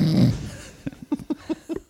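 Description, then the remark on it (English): A person imitates snoring: one loud, rough, low snort, then a quick run of about six short nasal grunts in an uneven rhythm. “I can't talk and snore at the same.”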